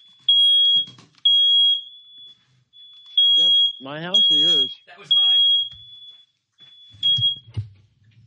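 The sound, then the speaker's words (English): A smoke detector shrills in repeated loud, piercing beeps with short gaps, while people talk briefly over it. “That was a smoke detector. I don't know why it went off, but it went off.”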